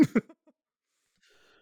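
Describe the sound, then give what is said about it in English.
Two sharp coughs in quick succession from someone coughing after eating a foot-long sandwich, trailing off into a couple of softer rasps, then a faint high hum in the background. No one speaks. “It's been one good cough after a foot long.”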